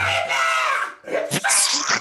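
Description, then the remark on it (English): A man lets out a long, loud, strained scream over music while performing songs in a concert, then a burst of harsh, noisy vocal shrieks follows, abrasive. “It's the screaming. I can't take the screaming.”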